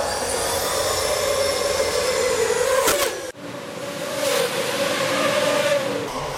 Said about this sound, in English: That, believe it or not, was the sound of drone racing.